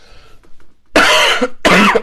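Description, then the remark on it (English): Two loud, harsh coughs, the first longer and the second shorter, following a quiet moment with no speech. “I can't get over this cough, man.”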